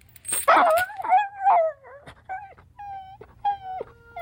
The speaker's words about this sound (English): they get a good, like, yelp in there as well. Yeah. A really good whimper sound.